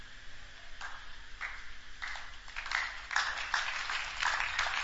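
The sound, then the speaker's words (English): An audience claps together, starting with scattered claps that quickly build into steady, dense applause, growing louder toward the end, with no one speaking over it. “Those who are clapping, may the word enter into you more.”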